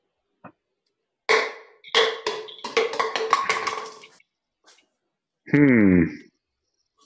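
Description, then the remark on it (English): A run of sharp taps on an unbreakable plastic beer glass, each with a short bright ring, starting spaced and speeding into a quick patter. A brief buzzy tone with a falling pitch follows after a pause. “Wait, that actually does not sound like glass though. It's not glass. It's unbreakable glass.”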